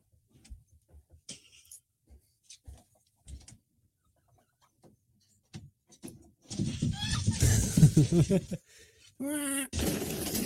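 Scattered short chicken clucks give way to a loud, noisy flurry of flapping and squawking, followed by a wavering, strained cackle and more commotion.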